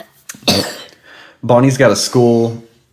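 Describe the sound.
A child gives a short, raspy cough, then makes a few loud voiced sounds in quick succession, like more coughing mixed with vocalizing, before trailing off.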